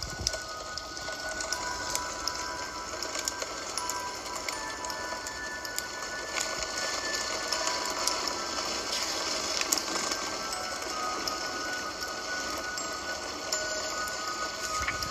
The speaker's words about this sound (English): So in that particular video, I hope you could hear it. I'm going to have to go back and re-listen to make sure, but you can hear the rain pattering on the window.